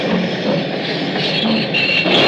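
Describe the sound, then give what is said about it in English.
A train rolls along the tracks between Dalbeath and Newton Stewart in a loud, steady rumble. Brief metallic squeals ride on top of it, and no one speaks. “10 hours later, between Dalbeath and Newton Stewart, I pulled the emergency cord and jumped off the train.”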